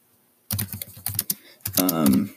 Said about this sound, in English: So I'm going to do this. I'm going to do some random stuff. Just typing in random whatever pops up.